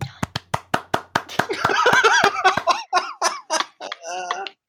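A quick, steady run of about a dozen sharp hand claps, then the clapping thins out as excited, squawky honking voices take over.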